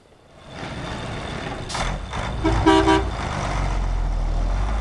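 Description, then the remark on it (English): Heavy trucks transporting fuel from the local gas plant to the capital, outside La Paz in the district of Senkata, rumble with a deep, steady engine drone, broken by a few short, bright tonal bursts, like beeps or horn toots, in the middle of the scene. “outside of La Paz in the district of Senkata, a group of protesters attempted to block a number of trucks transporting fuel from the local gas plant to the capital city.”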